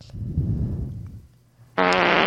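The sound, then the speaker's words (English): A loud, low, rumbling fart sound effect, played by an Amazon Echo smart speaker on a voice request, lasts about a second, followed by a brief quiet gap and then a sharp, buzzy, higher-pitched blast that cuts off abruptly. “Alexa, ask for farts.”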